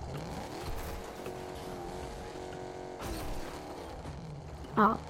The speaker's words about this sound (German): Das Auto muss doch irgendwas schaffen, wenn es so einen kranken Motor hat.